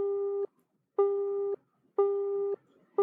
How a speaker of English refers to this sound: When you call, the line beeps that it's busy. But it's not because of him, it's because someone's trying to call you simultaneously.